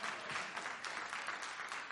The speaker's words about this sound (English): And I know. Yes, you should clap.